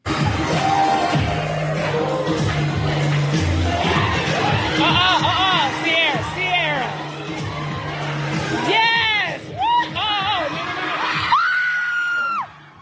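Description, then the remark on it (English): A crowd erupts in overlapping screams and yells as a woman slips off a thin balcony railing on a high second floor, with high, wavering shrieks rising and falling over a dense, loud wash of voices that cuts off abruptly at the end. “Now, what happened at that moment as that person screamed is she literally slips off the banister and it looks like she's about to plummet to her death.”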